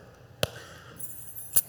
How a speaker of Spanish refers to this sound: Estas son mis llaves.